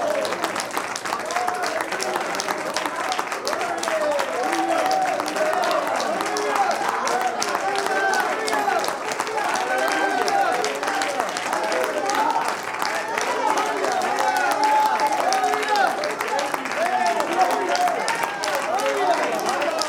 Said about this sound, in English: If I wasn't holding this mic, I'd say, you all clap hands with me.